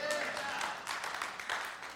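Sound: scattered clapping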